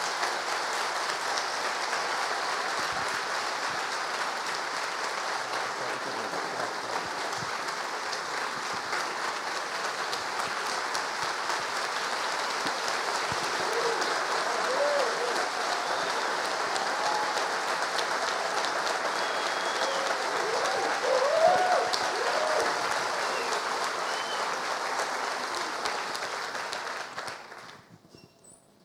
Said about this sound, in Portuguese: Eu queria que nós agora pudéssemos de pé recebê-lo com uma salva de palmas, agradecendo a ele a sua presença.